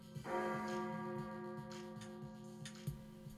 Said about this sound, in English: So you make really good time, and you are standing right in front of the entrance doors as the clock tower chimes 8 o'clock.